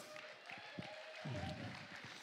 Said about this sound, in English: Applause, please